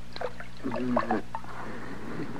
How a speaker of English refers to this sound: Looks like he's about to come to. I shouldn't wonder with all that water I splashed on him.